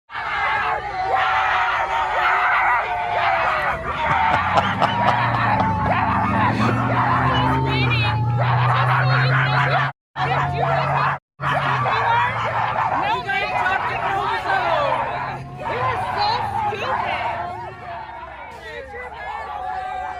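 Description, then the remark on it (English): A dense crowd of anti-Trump demonstrators yelling and barking like dogs, loud, with overlapping shouts, chatter and occasional screams filling the whole stretch, broken by two brief dropouts. “here is the reaction from anti-Trump demonstrators. They literally start barking.”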